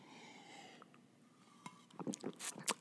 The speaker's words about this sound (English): Excuse me while I wet my whistle.